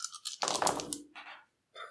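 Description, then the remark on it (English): A handful of dice clatter and tumble across a hard surface, a dense rattling burst followed by a few scattered clicks as they settle, with no voices. “I'll push. Which is all of them. So I need all of those dice.”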